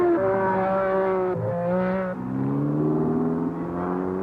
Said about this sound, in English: One of the things you really have to love when you listen to these audio clips is all those different kind of exhaust notes that are being made in the background as you're listening to cars practicing.